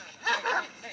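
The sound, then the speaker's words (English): Dogs bark in two quick, sharp bursts back to back, fairly loud, with a faint background hum before and after, as the character Ransom pulls up in a movie. “Even the dogs are like, yo, we don't know if we want you here.”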